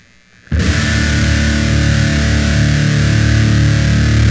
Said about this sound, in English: So right now, I'm going to pick up the 7-string, and I'll just play a little song, unproduced and unrehearsed. It even gets static sound. All right, this should sound pretty good.